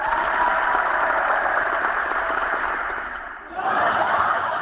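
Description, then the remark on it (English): A burst of canned applause played as a Google Hangouts effect: dense steady clapping that fills the whole clip, briefly dipping near the end before swelling again. No one speaks over it. “there's an effect here in Google Hangouts where if I want applause, if I want the narcissistic supply of an imagined audience applauding me, I can make it play.”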